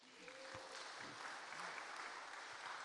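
Steady applause from a crowd giving a round of applause after a prayer, a dense, sustained patter of many hands clapping at once, fairly loud and continuous for the full few seconds with no voices standing out.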